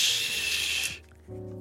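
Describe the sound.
A voice imitates a steam hiss: a steady, bright, breathy hiss that lasts just under a second and then cuts off. A short, low voiced hum begins shortly afterward.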